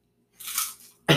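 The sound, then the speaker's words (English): A crisp crunch of someone biting into a freshly made rice cake, a brittle crackling burst followed by a second sharp, loud bite right at the end. No talking. “So you might hear me eating.”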